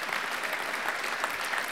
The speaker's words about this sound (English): Yeah, you could clap again. There you go.